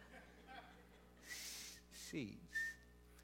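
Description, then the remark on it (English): A voice imitates Mrs. Gould, who whistled when saying S's, as in her bird ate bird seed: a few breathy hisses, one ending in a thin, high whistle tone, with a short voiced syllable between them. Fairly quiet. “And so she whistled when she said S's.”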